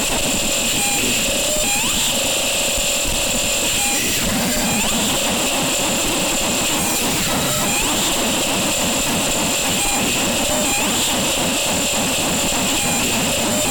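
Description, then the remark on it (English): A noise music recording of frog sounds: a loud, continuous wall of harsh hiss and grinding texture, with steady high whining bands and scattered chirping, croak-like blips. Nobody speaks. “Listen to these frogs. You hearing this? Hearing these frogs?”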